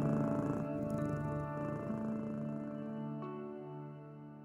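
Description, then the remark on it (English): A deep, sustained big-cat roar used as a sound effect, a loud rumbling growl that holds steady for several seconds before slowly fading, with no talking. “Roar. You're as mad as I am. Good one. That's what sound effects are for.”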